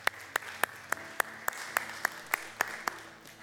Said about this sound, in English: Let's applaud him.